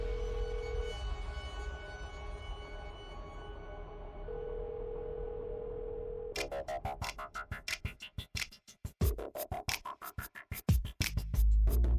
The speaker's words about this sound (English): Gilbert picked up the phone and dialed the number for his lawyer